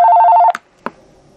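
A loud electronic telephone ring trills steadily for half a second and cuts off, followed by two sharp clunks like a handset being handled, then a faint low hum.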